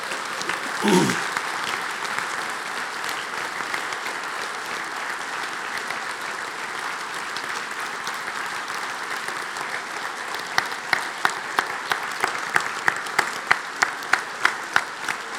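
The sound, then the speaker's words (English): Sustained applause from a sizable audience for two women being thanked for their service at a church, a steady wash of clapping that holds for the full stretch, with a few sharper individual claps standing out near the end. “You can clap.”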